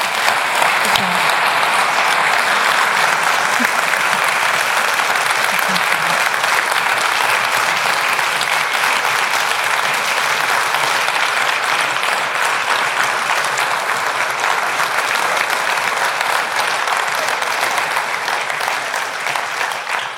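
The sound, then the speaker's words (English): Sustained, dense applause from an audience applauding students, a steady roar of many hands clapping that holds at an even loud level for about twenty seconds, tapering only slightly at the end. “So please join me in just applauding our students again for all that they've done today.”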